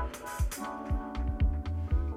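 Mellow music plays on its own, with warm sustained chords over a soft, steady thumping bass beat, at a moderate, relaxed level and with no voices.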